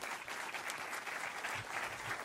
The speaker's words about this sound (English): And just to get us started, I just want to, one more time, give a round of applause to Ambassador Volker for bringing us here.